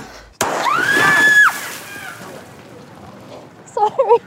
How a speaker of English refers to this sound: We'd already rigged out the storefront to the glass to explode.